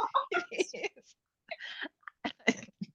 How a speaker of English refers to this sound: I shouldn't be coughing on this. Sorry, I do have a cold.